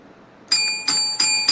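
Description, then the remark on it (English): A bright bell rings out four times in steady succession, each strike clear and fairly loud with a shimmering tone that lingers into the next, with no voices. “He's ringing the bell, he's letting us know it is time.”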